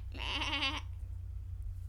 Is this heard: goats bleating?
yes